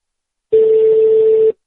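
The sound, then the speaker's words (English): A single steady telephone ringback tone of a call to Nigeria, one flat low-pitched boop lasting about a second, loud and clear over a phone line, with silence before and after and no talking. “I hate those foreign rings. I like the U.S. rings so much better.”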